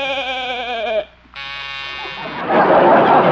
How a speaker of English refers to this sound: That's a new door buzzer, Doc.